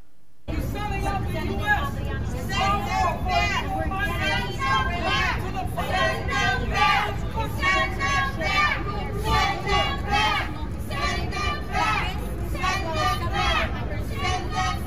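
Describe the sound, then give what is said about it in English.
A crowd in Manhattan yells and screams 'close the border' continuously at AOC as she speaks, many raised voices overlapping into a loud, steady roar that drowns out any single voice for about fifteen seconds. “By the way, she's getting yelled at. People screaming, close the border in the conservative bastion of Manhattan.”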